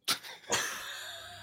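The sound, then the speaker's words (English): A sneeze-like sound made of two sharp, breathy bursts, a short one and then a louder one, followed by a trailing hiss. It stands alone, with no talking. “I'm sorry, did you sneeze?”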